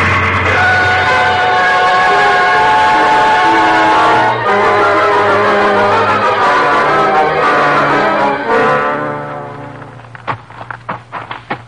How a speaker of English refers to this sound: Now there's the engine, Jase. Sure is a straining up that hill.